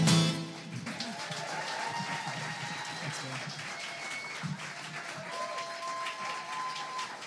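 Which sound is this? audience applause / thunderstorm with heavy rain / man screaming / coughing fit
audience applause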